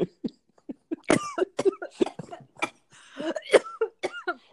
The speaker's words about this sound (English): Oh my god, you just made me laugh. I think we call that coughing in America. I had coffee in my mouth.